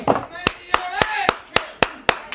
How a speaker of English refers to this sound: I got to clap for you. Man, you're making a great recovery.